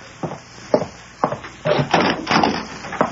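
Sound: door being opened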